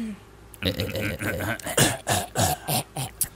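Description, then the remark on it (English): A loud string of rough throat-clearing coughs: about half a dozen harsh, rasping bursts in quick succession, with a guttural, hacking quality and no speech. “didn't do his patented cough of hair out of his throat this beginning of the show.”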